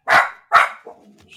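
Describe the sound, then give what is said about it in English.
Two sharp, loud dog barks in quick succession, followed by a brief softer whine or yip as the sound trails off. “The dog got excited about trading Jordan Love”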